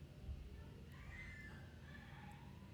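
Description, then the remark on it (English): A cat screams in one long, wavering, high-pitched yowl that rises and dips over about two seconds, heard over a steady low rumble of background noise. “That is some real screaming.”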